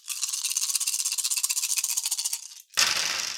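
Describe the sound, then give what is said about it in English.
A handful of nine dice rattles steadily and rapidly for a couple of seconds, pauses briefly, then spills out in a loud clattering tumble onto a surface as a game roll needing three successes. No one speaks. “So I need to get 3 successes on 9 dice.”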